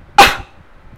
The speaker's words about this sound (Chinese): 好，如果没有痰出来的话，那我们就要做咳嗽。慢慢老师示范一次，鼻子吸，憋一点气，嘴巴咳。